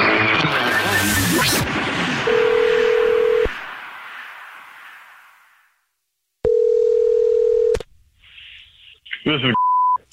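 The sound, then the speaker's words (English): A phone line rings out twice on an outgoing call from The Jubal Show calling back a listener who texted in, each ring a steady, low, buzzing tone lasting over a second, following a loud busy burst of sound and ending with brief beeps. “It's the Jubal Show, and you texted us that you have a dirty little secret, and now we're calling you back.”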